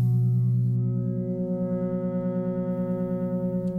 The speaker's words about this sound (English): And you can hear those electronic tones working together to create complexity.